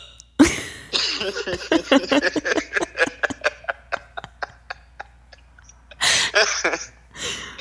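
Several sharp, sudden hiccups burst out, loud and abrupt, with a rapid run of short clicking gulps between them and no talking.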